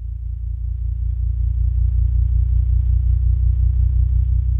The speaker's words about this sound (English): We're hearing gravitational waves, the ripples in space-time made by the tremendous mass of colliding black holes. We can hear them because their wavelengths have been shifted all the way into the human range of hearing by MIT professor Scott Hughes.